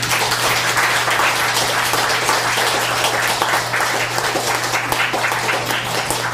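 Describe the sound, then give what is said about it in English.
An audience at a poetry reading applauds steadily for several seconds, a dense, even wash of many hands clapping with no pauses, over a faint low hum. “Give yourselves and everyone else a hand.”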